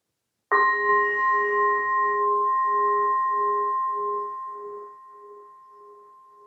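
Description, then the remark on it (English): A single meditation bell is struck once to begin a poem reading, ringing out clearly with a pure, sustained tone that slowly pulses and fades over several seconds, alone with no talking. “I'll just ring the bell to start first.”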